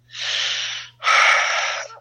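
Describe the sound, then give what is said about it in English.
Two heavy breaths, a long inhale then a louder exhale, hissing harshly and airily as a person mouth-breathes straight into a phone during a call, with a faint low hum underneath. “To stop clicking the pen and don't breathe into the phone.”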